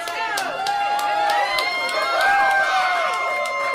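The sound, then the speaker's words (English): A crowd cheers on contestants eating cinnamon rolls with their hands at a cinnamon roll eating contest, many overlapping voices whooping and calling out together steadily, loud, with no clear words standing out. “They just gotta go right into their hands and everybody cheer them on.”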